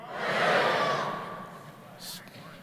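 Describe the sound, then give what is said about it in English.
An audience yells out at once, on a count of three, what color they see, in a loud, jumbled burst that peaks early and then fades into a lingering murmur, with a brief hiss near the end. “On the count of three, I want you to yell out what color it is, okay? One, two, three.”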